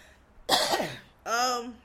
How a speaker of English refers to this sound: Okay. Sorry, I gotta clear my throat. I do have my water, though.